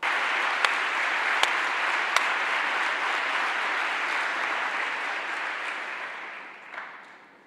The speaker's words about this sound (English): I hope you can tell from the length and the warmth of the applause that people agree with you.